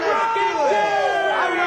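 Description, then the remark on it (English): A large crowd cheers and yells excitedly, a dense wash of many voices shouting together at steady loudness throughout, like an enthusiastic concert audience. The crowd is at a huge live Ninja Turtles event. “And the thing is, everyone in those crowds were so excited to see the Ninja Turtles.”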